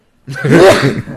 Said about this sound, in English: So, let me sneeze for a second.